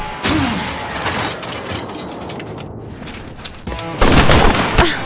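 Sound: gunfire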